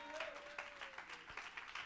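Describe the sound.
A worship audience claps together in a steady, rhythmic beat, lively, with a sustained tone and faint voices blending in underneath.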